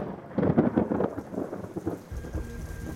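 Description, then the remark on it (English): Heavy rain pours steadily over Fatima while a deep rumble of thunder swells early on and rolls on low underneath, with no voices, just the dense hiss of the downpour. “Fatima was drenched in heavy rains in the hours leading up to the miracle of the sun.”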